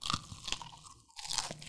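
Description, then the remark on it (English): A crisp crunch of someone biting into crunchy food, followed by a few quieter chewing crunches and a brief pause before another loud bite. “Let's hear that crunch.”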